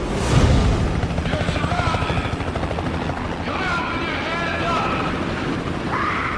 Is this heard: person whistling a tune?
no